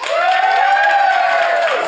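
The live audience of the Flatshare Slamdown applauds to vote for one side of a flat-share dispute, for about two seconds, loud and steady, with a sustained whooping cheer riding over the clapping before it tapers off at the end.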